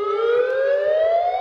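A tsunami warning siren in Alaska wails steadily after an 8.2 magnitude earthquake centered 56 miles offshore, its loud, harmonic-rich tone climbing slowly in pitch throughout, with no voices present.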